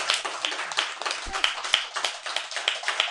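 An audience at a reading event applauds the readers in a steady round of clapping, many hands at once forming a dense, bright, continuous patter with no one speaking.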